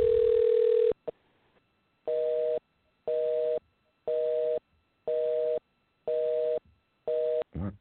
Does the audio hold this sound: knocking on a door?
no